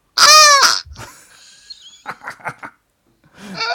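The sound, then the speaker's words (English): A squeezed toy sheep gives a loud, buzzy, moo-like bleat, followed by faint squeaking and a quick run of short squeaky bursts, then another bleat begins at the end. “Do you know if you squeeze this sheep really hard? Listen. It's like a cow or something.”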